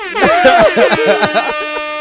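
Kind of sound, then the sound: signal or alarm, air horn blast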